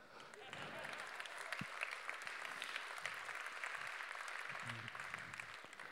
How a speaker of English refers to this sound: What we would do in Cambridge is we'd clap.